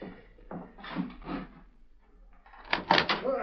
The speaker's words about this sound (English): They're out here in the street. I'll open the door. You can hear them for yourself.